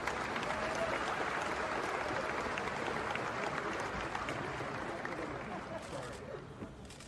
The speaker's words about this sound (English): Iowa is now the 34th state to formally sanction girls wrestling as an official high school sport. Here is the audio from that announcement, caught on camera from our excellent photographer, Joe Kress, complete with the long applause that followed.